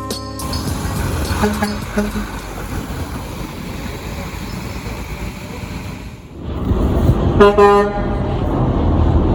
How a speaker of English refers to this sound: You just heard truckers honking in support of striking workers at United Metro Energy in Brooklyn, New York.